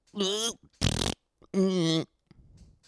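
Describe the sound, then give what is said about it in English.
A person blows a series of mouth-made fart noises: a buzzy voiced blurt, a hissing sputter, another long buzzy blurt, then a faint rough trailing rasp. “I feel like if you can spell a fart sound, you would officially win the Nobel Peace Prize.”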